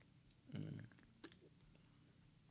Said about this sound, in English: Get another sip of water, and maybe it will spring to the forefront.